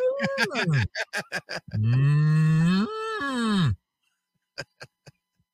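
Cattle moo loudly: a few short, bellowing grunts followed by one long, drawn-out moo, then silence broken by a few faint clicks.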